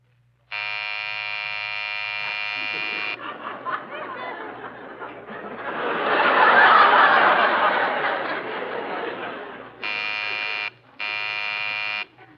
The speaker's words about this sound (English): you're snoring. I thought that was you.